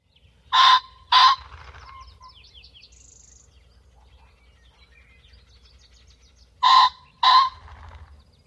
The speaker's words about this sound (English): Here is what a ring-necked pheasant sounds like.